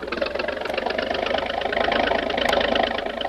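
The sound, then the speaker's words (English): A boat engine revs hard at full throttle, trying to lift the bow out of the water to run onto a mainland beach, in a steady, rough mechanical roar that swells slightly louder partway through, with a dense buzzing drone and no voices. “by giving her the gun, the speed may lift the bow out of the water”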